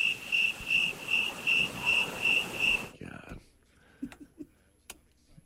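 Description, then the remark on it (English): A cricket chirping sound effect played from a cricket button pulses in steady, regular bursts for about three seconds, then cuts off abruptly, leaving a few faint clicks and brief low voices. “You're hitting crickets and. I came in too soon with the crickets.”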